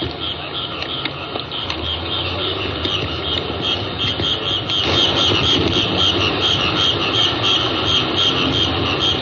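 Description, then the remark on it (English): A steady, dense night ambience in the middle of the city of Bangkok, Siam, with a continuous wash of insect-like buzzing and a low traffic or engine rumble underneath, an occasional car in the distance, holding an even level throughout with no voices. “Night sounds in Bangkok, Siam.”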